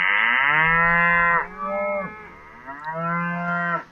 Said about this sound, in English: Okay, we've got a new jingle. We got beef. That is good. Genuine cows there.